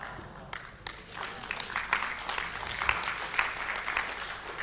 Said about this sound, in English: Everyone clapping was the people who actually gave. And those who didn't clap didn't give anything.